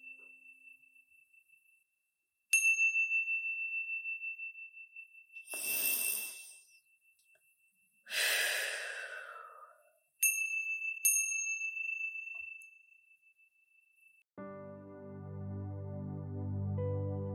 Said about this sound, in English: When you hear the sounds of the chime, gently coming back into this space.